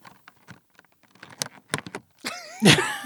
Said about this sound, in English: What? That was just static noises. That's about what I expected.